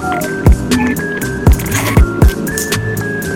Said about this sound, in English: And then here's the satisfying sound of a man chugging his own LaCroix.